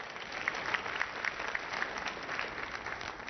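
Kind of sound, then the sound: crowd, audience clapping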